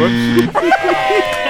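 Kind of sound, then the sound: signal or alarm, game show buzzer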